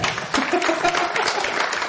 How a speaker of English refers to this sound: Round of applause for Wanda.